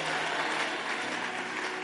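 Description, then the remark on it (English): A crowd claps their hands together in a dense, steady burst of applause that stays loud and even for the whole couple of seconds, with no voices standing out. “Clap your hands and give me a big amen in the house.”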